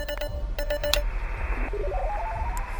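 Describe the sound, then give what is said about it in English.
An electronic telephone rings with a quick series of sharp, chirping tone bursts, then a steady, warbling electronic tone that steps up and down in pitch, fairly loud with no voices. “Oh, will you just shut up with your fucking ranting and answer that? The ringing, it's giving me flashbacks.”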